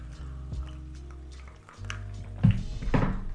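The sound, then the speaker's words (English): Drinking glasses are knocked together in a toast, giving two dull, fairly loud clinks about half a second apart, with no talking. “We forgot to cheers.”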